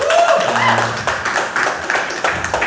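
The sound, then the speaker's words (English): An audience claps steadily for a few seconds, a dense patter of many hands with no pause, and a brief high whoop rises over it near the start. “But I don't want you to clap.”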